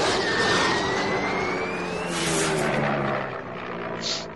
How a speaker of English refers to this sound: So cool hearing that prop plane in that. Sorry, I just want to get it for being an audio guy.